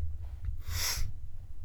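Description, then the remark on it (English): One quick, breathy throat clearing, fairly loud, standing alone over a low steady hum with no one talking. “Let me clear my throat.”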